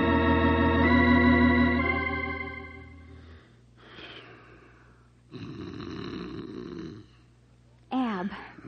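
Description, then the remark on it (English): A man in bed snores loudly, a few long rasping snores with gaps between them, following a sustained droning, musical tone at the start. “Roll over. You're snoring.”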